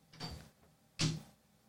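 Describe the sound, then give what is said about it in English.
A door is pushed open with two short thumps: a softer rattle first, then a sharper, louder knock about a second later. No voices. “The door won't open. Push. Push. Don't pull. There you go.”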